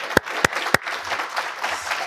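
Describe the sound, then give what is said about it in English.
An audience applauds to thank the US Embassy for hosting the event. A few sharp, loud claps at the start give way to a dense, steady patter of clapping from many hands. “I think first I just want to give a massive round of applause and thank you to the US Embassy for hosting us today.”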